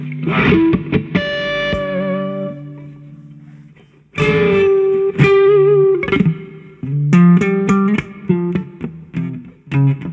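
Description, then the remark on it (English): Loud, heavily distorted electric guitar chords from an amp on its high-gain setting, with extra reverb and the master turned down, ring out with a long reverb tail: several sustained strums followed by a flurry of sharper, choppier hits near the end, with no voices. “And all I did was switch the a bit more reverb and I turn the master down, but I just changed the high gain.”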